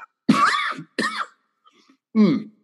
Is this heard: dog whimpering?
no